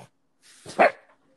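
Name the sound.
dog barking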